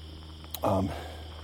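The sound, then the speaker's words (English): Crickets chirp steadily in a faint, continuous high-pitched drone, broken by a brief click and a short voiced murmur in the middle. “It's nice hearing these crickets, eh?”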